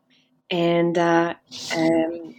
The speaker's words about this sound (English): Oh, excuse me, I just sneezed.